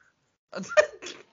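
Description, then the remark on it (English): A person imitates a sheep's bleat, "meh", with a short, breathy vocal burst, rising sharply in the middle before trailing off, about a second long. “What did I do last week? It was sheep, weren't it?”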